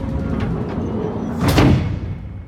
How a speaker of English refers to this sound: You gotta close that door now. I ram my arm into the nook, squeeze the switch, and the last thing I see before the engine room door closes